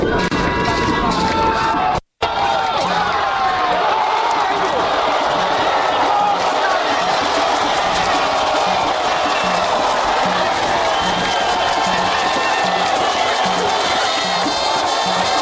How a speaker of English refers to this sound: As the place erupted with the crowd singing and cheering them on, Team Ghana took advantage of the momentum and took the lead.